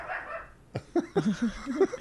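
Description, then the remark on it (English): A watchdog lets out a rapid string of short, sharp barks and yips, about seven in quick succession, moderately loud, on hearing someone coming up the stairs, after a brief stretch of soft background noise. “That's our watchdog.”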